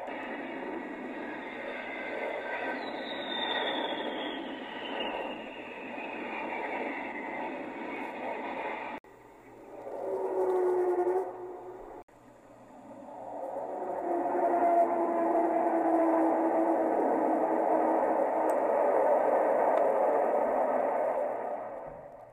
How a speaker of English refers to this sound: it would be the howls and whistles of the Avro Vulcan jet.